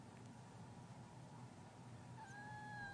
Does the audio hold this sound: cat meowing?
yes